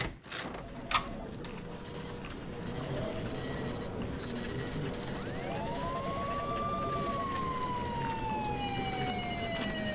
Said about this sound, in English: Phones ringing, sirens squealing away, the smell of justice and smoke in the air.